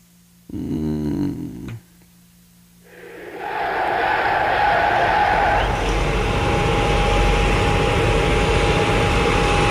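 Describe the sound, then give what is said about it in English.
An airplane taking off: a loud engine roar swells up and holds steady with a high whine on top, after a brief growling, buzzy burst at the start. “It's a plane taking off, I think.”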